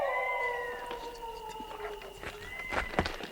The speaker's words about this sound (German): Ein Wolf hat dir geantwortet. Toll. Boah, der Wolf heult fast so gut wie du